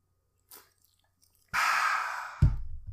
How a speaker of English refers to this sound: With that said, mouth is getting a little bit dry again, so let's get another sip of the ice-cold Coke. My throat is hurting a little bit, so let's massage it with a few bubbles real quick.